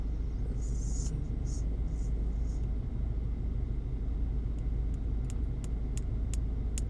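A car engine idles with a steady, low rumble that holds constant for the whole stretch, joined by a few faint high chirps early on and light ticking clicks toward the end.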